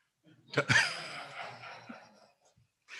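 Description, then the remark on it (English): A single sneeze: a short intake of breath, then a sharp, noisy burst that trails off into a breathy hiss over a second or so. “God bless you, brother.”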